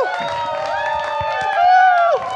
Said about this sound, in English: Big round of applause.